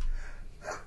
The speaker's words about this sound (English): Excuse me, I'm about ready to sneeze.